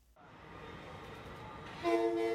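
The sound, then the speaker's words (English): A passenger train rumbles steadily with a broad, continuous roar, then sounds a loud, sustained horn blast near the end as it pulls into the new 700,000-square-foot Grand Central Madison terminal, below the current rail hub in Manhattan. It is the first passenger train into the terminal. No one speaks. “As the first passenger train pulls in at the 700,000-square-foot terminal, located below the current rail hub.”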